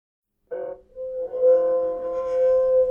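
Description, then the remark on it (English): A glass holding liquid rings with a clear, sustained tone that starts abruptly, dips briefly, then swells and holds steady with bright overtones until the end, fairly loud, with no talking. “And see how the ringing sounds different depending on how much liquid's inside?”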